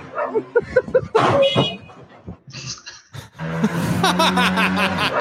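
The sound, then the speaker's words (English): A dog barks and yips excitedly in quick bursts at a motorcycle driving down a street, its engine rumbling while the barking continues over it. “Okay, so it's a motorcycle driving down the street and it's called CrossFit, and then a dog comes out barking at the motorcycle”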